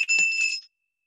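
A single bright, high-pitched bell inscribed with Isaiah 62, verses 6 and 7, rings briefly as a prophetic sign with a clear metallic tone, then cuts off after about half a second, leaving silence. No voices are heard.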